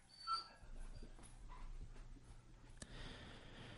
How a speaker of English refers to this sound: That's Marty, our dog, in the background. The thunder and so forth is bouncing around, so he gets very scared about it. He doesn't have his buddy Barney around to help him.